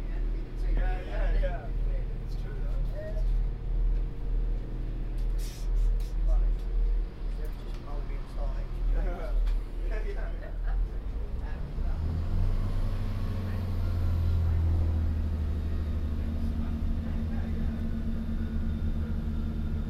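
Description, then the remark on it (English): Steady low rumble inside a moving Great Western Railway passenger train, with a hum of engine tones that swells and rises in pitch partway through, and faint muffled voices early on. “all leave the train when the doors are closing. This is a Great Western Railway service to Pebble Beach.”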